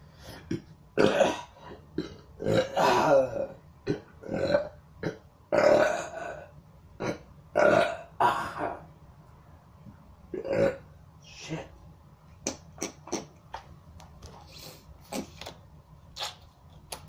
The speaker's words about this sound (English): So yeah, people will like hear me burp or see me spit and they'll be like, ew. And I'm like, I have Lyme disease and I couldn't breathe just now, so you are the asshole for saying ew to me spitting. And burping.